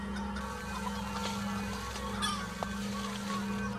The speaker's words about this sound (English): It's never easy with chickens, is it? You can say that again. I'd rather tend to cows all day than deal with chickens for even 10 minutes.